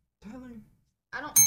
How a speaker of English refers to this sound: Okay, so first, ring the bell.